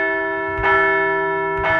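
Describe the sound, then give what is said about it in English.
A large bell rings with a long sustained, shimmering tone, struck twice about a second apart, each strike adding a bright swell over the lingering resonance. “We're going to ring that bell again.”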